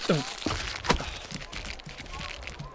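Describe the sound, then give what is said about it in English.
An overloaded plastic bag full of fruit, vegetables, pies and fish rips open at a market, a few sharp crackling tears followed by thuds as contents drop, with a murmur of voices running underneath throughout. “Don't overload a plastic bag.”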